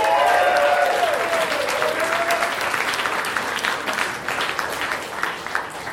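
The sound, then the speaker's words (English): An audience claps steadily throughout, a dense wash of applause with a few whistles or cheers riding on top early on, staying loud and fairly even before easing slightly; the audience applauds to pick a favorite act at a comedy show. “So, with your applause, pick a favorite, starting from Goodrich Gevaart, Unsolved Mysteries.”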